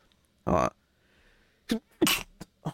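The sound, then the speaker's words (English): A sharp, forceful sneeze bursts out amid a few other short, loud throat and breath sounds, with brief quiet gaps between the bursts. “Gesundheit.”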